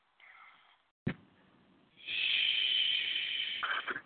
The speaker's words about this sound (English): I can't tell if he's saying shh or what he's doing. He's breathing heavy.